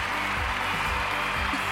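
A crowd cheers and applauds in one steady, dense wash of clapping and voices for a couple of seconds, with a low droning hum beneath it.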